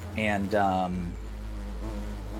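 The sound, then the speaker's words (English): A voice imitates wasp buzzing: a loud, rising and falling buzz for about a second, then a low, steady hum that carries on quietly to the end. “You start to hear that like buzzing of wasps.”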